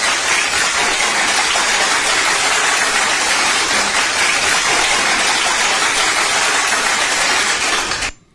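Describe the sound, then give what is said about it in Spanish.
An audience applauds to welcome a bachata singer from the Dominican Republic, in a dense, steady wash of clapping that stays loud for about eight seconds before stopping abruptly. No voices are heard over it. “y el aplauso como se lo merece.”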